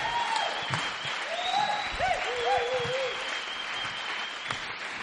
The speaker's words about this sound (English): And yeah, let's give her a cheer actually. It's really good to have her here.